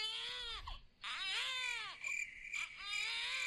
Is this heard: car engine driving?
no